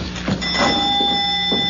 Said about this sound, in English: Yeah, the bell. The doorbell. It's the same.